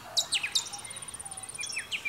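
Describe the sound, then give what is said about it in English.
Kookaburras and other birds sing and chirp at dusk before rain, with high, downward-sweeping calls layered over a rapid, steady high-pitched trill, fairly soft throughout, with no voices. “A cacophony of kookaburras laughing in dusk, announcing the arrival of rain.”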